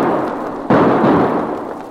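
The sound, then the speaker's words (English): A sudden loud gunshot bursts out from a grove of aspens, followed by a long rumbling roar that slowly fades, then another sharp shot cuts in at the very end. No one speaks. “The shots came right from those aspens.”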